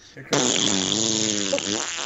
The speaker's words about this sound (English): Whoops. Women don't fart either. Nope.